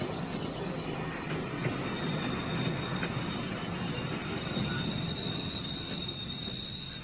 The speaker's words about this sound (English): Quickly, a train's coming.